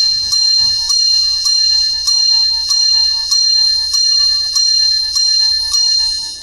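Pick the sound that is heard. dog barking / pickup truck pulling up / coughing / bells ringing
bells ringing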